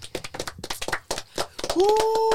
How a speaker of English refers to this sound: I don't know why we clapping. I ain't know we celebrated accomplishments.